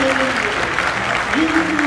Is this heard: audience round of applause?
yes